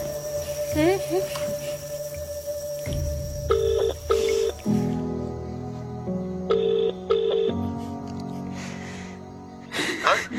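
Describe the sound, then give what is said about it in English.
An outgoing call's ringback tone repeats twice in a double-pulse pattern, clear as if from a phone speaker, over steady background hum and faint chatter. “Where's my phone? I need to ring”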